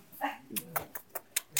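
A puppy in a bag, being carried away, whimpers: a brief high whine followed by a quick, steady series of short, sharp yelps, moderately loud and otherwise alone.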